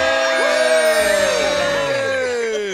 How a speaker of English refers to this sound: Screaming, everybody. Yeah, that was good screaming.